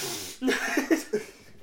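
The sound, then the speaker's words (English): A few short, throaty coughs in quick succession, close and moderately loud, sounding like a person voicing or imitating the coughs rather than a natural fit. “Cough, cough, sneeze. Cocaine snort.”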